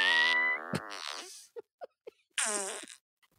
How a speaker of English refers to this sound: So good. That's my fart app, everyone. I love that app.